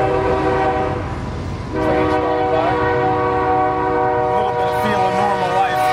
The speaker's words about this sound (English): All right, so the train's going by. At least this is something familiar again, right?